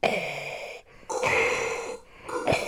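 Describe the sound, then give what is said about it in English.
A voice imitates Darth Vader's heavy, rasping respirator-mask breathing: three long, hissing breaths in and out, separated by brief pauses, with no talking. “Would you rather talk like Yoda or breathe like Darth Vader for the rest of your life?”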